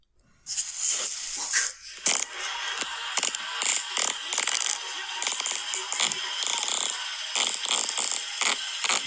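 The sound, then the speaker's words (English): A long, sputtering fart runs for about eight seconds, loud and raspy with crackly, rattling pops breaking up a steady noisy blast. No one speaks over it. “Good fart, though. Great length.”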